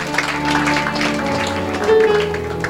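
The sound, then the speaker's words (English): A church audience claps to Jesus steadily for a few seconds, a dense, even patter of many hands, with sustained low musical tones holding underneath. “That's somewhere to clap to Jesus.”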